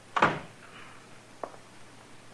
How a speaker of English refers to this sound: Will you shut the door? You're letting in all the flies in Kansas. But, Mr. Dillon, I can't... Shut the door, Chester. You can go out or stay in, but shut the door.